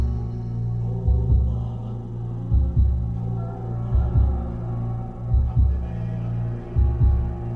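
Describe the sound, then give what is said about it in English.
A slow, steady heartbeat thuds in deep double beats, about five in all, over a constant low hum, muffled as if heard from inside the body. No voices. “The first music I ever heard was my mother's heartbeat.”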